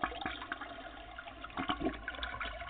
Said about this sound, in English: The problem is you should have flushed the toilet before the game. Okay, well, we'll log in just to flush the toilet for you, Jay Cutler.